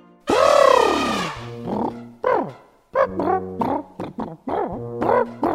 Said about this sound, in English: Hi, today I'm at the zoo with my friend Ernest. He's an elephant. He just said hello, by the way.